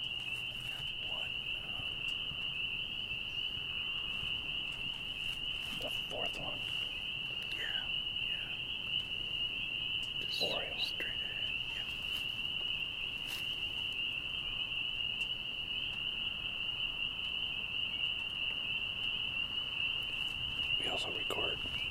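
At night at the Cox Hollow Boat Launch in Governor Dodge State Park, Iowa County, Wisconsin, during a frog and toad survey listening stop, a steady, high-pitched trilling chorus of frogs and toads drones without a break, with a few brief chirps and soft rustles rising above the constant hum.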